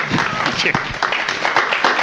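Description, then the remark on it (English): An audience applauds steadily for about two seconds, a dense, even wash of many hands clapping, with a few voices murmuring underneath. “Now you clap.”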